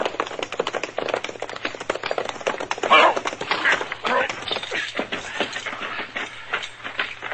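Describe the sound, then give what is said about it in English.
Rapid hoofbeats of a ridden horse clattering along at a steady gallop, heading down into a river bottom, a dense rhythmic clip-clop with no voices over it and a slight easing toward the end. “there's somebody over there on a horse heading down into the river bottom.”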